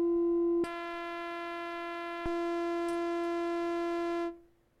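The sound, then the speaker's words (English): A steady synthesizer sine wave tone holds one low-mid pitch for about four seconds, starting with a click, jumping slightly louder after another click, then cutting off. No one speaks. “Okay, sine wave sounds good.”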